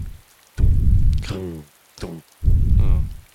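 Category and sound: nature, rain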